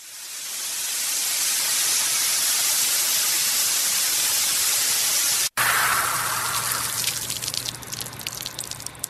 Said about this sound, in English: Is that a giant hose? It's a fire hose.